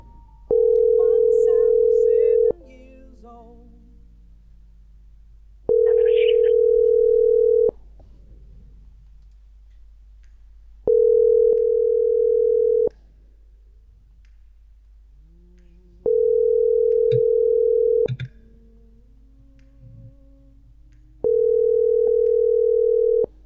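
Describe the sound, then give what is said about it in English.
A steady mid-pitched telephone tone from a calling machine that is hesitant to dial sounds in five even bursts, each about two seconds long with roughly three-second gaps. Faint background noise and brief murmurs fill the pauses, and no dialing is audible. “Now it's hesitant to dial. Try the other machine.”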